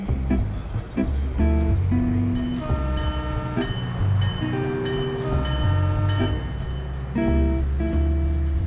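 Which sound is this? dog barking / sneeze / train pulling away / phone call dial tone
train pulling away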